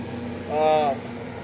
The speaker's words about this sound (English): Those of you listening, it's a helicopter going by, that's why I'm saying wow.